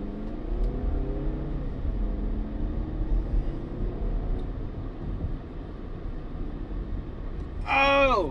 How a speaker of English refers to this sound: I guess I know who's honking at me now. It's probably one of my buddies. They're probably driving the truck behind me, or they're driving a truck that I passed, and that's why they honk.